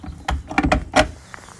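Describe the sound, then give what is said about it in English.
A small wooden hen door at the front of a large Perthshire Poultry chicken coop is opened, giving a quick series of knocks and scraping slides with a brief rattle, then it settles into quiet. “And obviously I can reach across to open their little, the sort of giddy little hen door at the front.”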